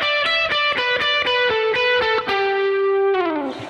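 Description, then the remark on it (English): Distorted electric guitar playing a quick run of individually picked notes, each with a sharp, defined attack in a steady rhythm, ending on a sustained bent note; no talking. “When I pick all of the notes, I get a very clear, defined attack on each note.”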